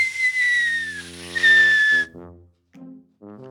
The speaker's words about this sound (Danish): Det koster 0 kroner, at jeg står og pifter over hjørnet.